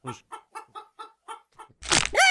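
A chicken clucks six or seven times in a quick, steady rhythm, clear, then breaks into a loud, harsh squawk at the end.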